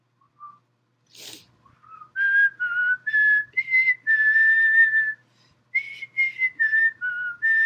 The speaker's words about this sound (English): I'm dehydrated. Weak whistle, gang.